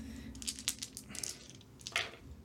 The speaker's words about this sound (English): I'm rolling my legendary pants dice, my d6s that I got.